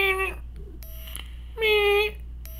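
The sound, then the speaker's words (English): A vape mod's PWM chip gives off a thin, steady electronic whine in two short bursts as someone vapes, the second one louder. A constant low hum runs underneath throughout. “Yeah, it's a PWM chip, so I hear that every time I vape.”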